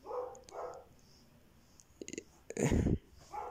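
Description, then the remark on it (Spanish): A dog barks a few times in short, sharp bursts, with a louder, rougher bark near the end. “Grabo un podcast y un perro empieza a ladrar a huevo.”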